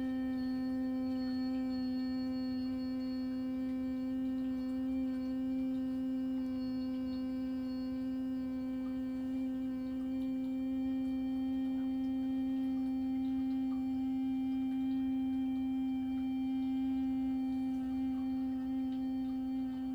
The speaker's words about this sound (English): Please continue with the humming sound, maintaining also an awareness of the deep, silent and slow breathing that is going in.